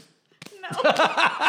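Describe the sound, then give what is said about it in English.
Two quick, sharp slaps of hands right up close, made near a microphone as a sound effect, followed at once by a voice chattering and laughing with bouncing, rising-and-falling pitch. “Tessa's slapping my hands right now.”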